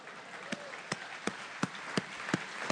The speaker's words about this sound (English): Let's give a round of applause because the heater's finally off.